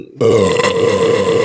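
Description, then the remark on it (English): A loud, drawn-out burp erupts suddenly after a brief quiet moment, rumbling steadily for over a second with no talking over it. “That's the best thing about having control of the board when you got a burp.”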